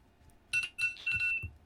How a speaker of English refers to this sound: As my alarm goes off for no reason. What did I set that alarm for? 8 o'clock.